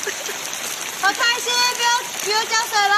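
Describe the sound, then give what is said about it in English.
Steady rain falls on a Saturday afternoon in a mountainous area of southern Taiwan, a dense even wash of sound, while excited children chatter and call out over it partway through as they run into the rain with umbrellas. “Rain descended on southern Taiwan on Saturday afternoon.”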